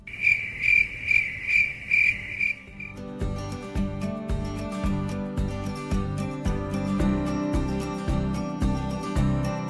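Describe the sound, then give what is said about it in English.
Crickets chirp in a steady, pulsing rhythm of shrill bursts for a few seconds, then a rhythmic music track with a thumping beat cuts in and carries on to the end. “It's a cricket convention.”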